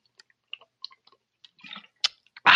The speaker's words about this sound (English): Now, I'm going to have to take my usual big swig of water.